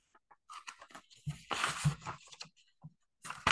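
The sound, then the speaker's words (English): Pages of Mary Oliver's book Long Life being flipped to find page 86: a run of crisp, irregular papery rustles and swishes, with a couple of soft thumps midway and a final louder riffle, no voices. “Let me find the page in the book, page 86.”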